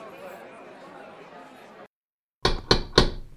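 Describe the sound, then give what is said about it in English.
Murmured crowd chatter fades to a brief silence, then three loud, heavy bangs on a door land close together in quick succession, each sharp and resonant. “Who's that banging on the door?”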